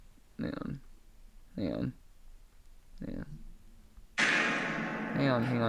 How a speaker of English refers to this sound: It's a fart echo, dude. Fart echo. Yeah, that's what I was saving it for when we got quiet, and then it just accidentally went off.